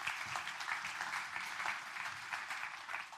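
A crowd claps steadily throughout, a dense, continuous patter of many hands heard from a moderate distance, holding an even level for several seconds.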